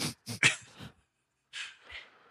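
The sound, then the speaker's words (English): Rough snoring right into the microphone: a few quick raspy snorts, a short silence, then two more breathy snores trailing off. No talking. “…, don't snore into the microphone.”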